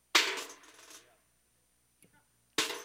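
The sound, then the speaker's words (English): A handful of coins cast into an offering clatters down with a bright, jingling cascade that rings out for about a second, followed by a couple of faint clinks and then another burst of falling coins. “The Bible says they were casting in the offering of God.”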